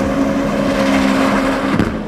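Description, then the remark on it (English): A hybrid race car engine, an internal combustion engine working alongside an EV system, drones loudly and steadily, its high harmonic whine holding pitch before a brief break near the end, like a gear change, with no voices. “It's got a pretty complex architecture, internal combustion engine working alongside pretty complicated EV system.”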